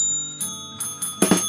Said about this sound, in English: We couldn't win that, though, because we have a bell in every episode. No, we should win some sort of double bell prize.